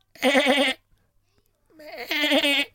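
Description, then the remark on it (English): A person imitates a sheep with two wavering, nasal bleats, each lasting about half a second and separated by a short pause, fairly loud. “Like I think I do quite a good sheep.”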